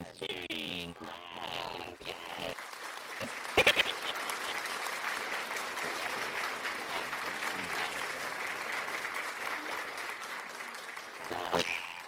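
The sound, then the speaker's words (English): Sustained applause: a dense, steady wash of many hands clapping that runs for about twelve seconds, opening with some vocal whooping and ending with a couple of sharper bursts. “Let's get some audio effects for that, okay?”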